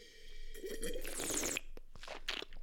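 A sip of wine: a wet, breathy slurp followed by softer mouth and swallowing noises, with no one talking.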